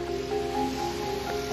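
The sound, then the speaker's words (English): A steady, continuous rush of flowing water in a creek called Lost Creek, even in loudness, with no voices and a faint low hum running beneath it. “This creek is called Lost Creek.”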